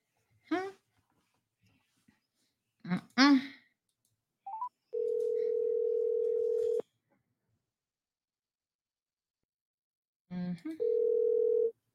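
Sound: telephone dialing and ringing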